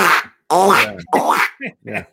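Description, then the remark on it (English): A person imitates a duck call's quack with a loud series of about five nasal, raspy bursts, the first ones drawn out and the last few shorter and clipped. “Did you use my patented duck call?”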